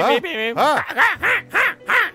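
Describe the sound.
A person voices a string of nasal, honking calls, about five or six loud bursts in quick rhythmic succession, a human imitation of a goose honking.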